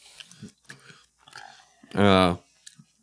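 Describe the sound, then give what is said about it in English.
Fairly quiet crunching and chewing of a hard, crunchy chocolate-flavored snack, a few irregular crunches over a couple of seconds, broken by a short loud voiced hum partway through. “It's got a hard crunch.”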